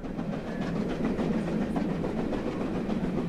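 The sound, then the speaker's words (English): A passenger train rumbles along the rails with a steady, rhythmic, loud clatter, continuing without pause on its way to its next stop, Salisbury. No one speaks. “The next stop was Salisbury, where some passengers left the train to spend time in the city.”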